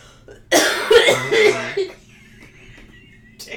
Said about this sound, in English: Not the COVID wheeze. It's now the wheeze and the cough. Damn.